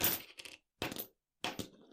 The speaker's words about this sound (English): I've got a baggie. Let me get a clink. That's not getting a very good clink. Hold on. Let me. Yeah, I was going to say, I'm literally not hearing this clink.